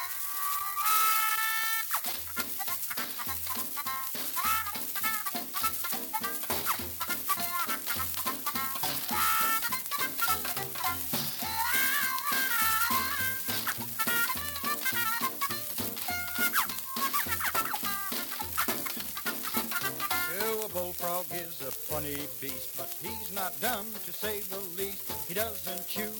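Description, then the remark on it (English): A lively old-time folk tune, Turkey in the Straw, plays without any voices, its bouncy melody riding a steady, quick rhythm over a bright, slightly crackly recording that stays loud throughout. “Now, this week, the song of the week is Turkey in the Straw, provided to us courtesy of the Internet Archive.”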